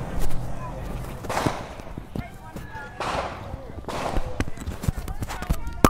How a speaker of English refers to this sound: just got to be careful here with some gunshots. Excuse us. It sounds like gunshots. I'll let you know what this is. These seem to be gunshots. Where is that?